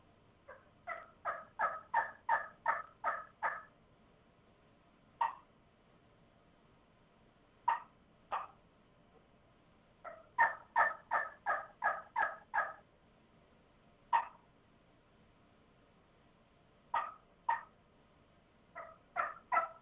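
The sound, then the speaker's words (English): Soft turkey yelps played on a cane call, coming in quick rhythmic runs of about seven to nine notes, broken up by single sharp clucks, fairly quiet with no talking. “I'll do a little soft yelping and soft clucking and stuff like that.”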